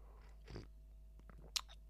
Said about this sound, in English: I'll take a sip of coffee here. I love this Yeti, but it keeps this coffee like 500 degrees. It never cools down.